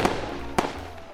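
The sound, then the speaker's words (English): Two sharp fireworks pops, from people lighting off fireworks, go off about half a second apart, each a quick crack that fades fast over a low, steady background rumble. “You better put them in, because these goddamn Mexicans are lighting off fireworks.”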